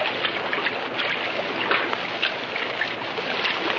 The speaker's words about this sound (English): That water is deep, friend of my heart. It runs very smoothly. Well, we'll wade in as far as we can.